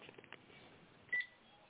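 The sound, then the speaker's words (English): A single sharp electronic keypad tone from an Obama phone sounds briefly and loudly, preceded by a few faint muffled clicks against a low hiss, with no talking. “Yeah, damn about that Obama phone, man.”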